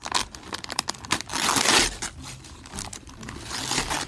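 Paper crinkles and crackles, with a few quick tears and a longer ripping stretch as wrapping paper is pulled off a Christmas present, a pint glass, no talking over it.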